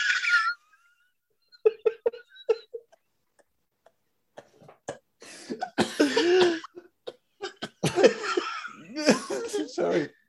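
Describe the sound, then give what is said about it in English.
A loud coughing fit: a few sharp, scattered coughs at first, then a rapid, ragged cluster of hacking bursts that build in intensity, mixed with gasps, burping and what sounds like laughter. “I'm like coughing and burping at the same time and vomiting.”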